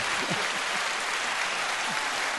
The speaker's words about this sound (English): Everybody in the room. Everybody clap all at once.